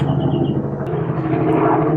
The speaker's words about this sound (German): Hubschrauber. Ein sehr lauter Hubschrauber. Der Hubschrauber wird immer lauter. Wie soll man da Videos machen?